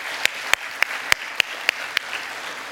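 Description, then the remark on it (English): An audience at a church worship service applauds steadily for first-time guests and the children, a dense wash of clapping with several sharper, louder claps standing out at roughly regular intervals. No one speaks over it. “we give a round of applause to our new first-time guests”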